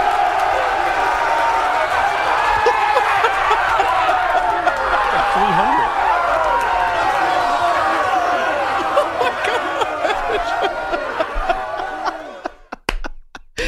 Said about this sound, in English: Sean McVay starts out, but listen to the cheers when he calls Baker to the middle of the locker room.